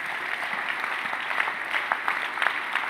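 An audience claps steadily, a dense wash of many hands applauding at once with small bursts of emphasis, fairly loud and continuous with no talking over it.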